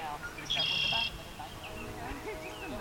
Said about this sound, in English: Surrounded by fields of lavender with bees buzzing and birds chirping